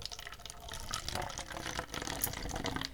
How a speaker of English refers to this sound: And now I'm going to pour the water into the cup.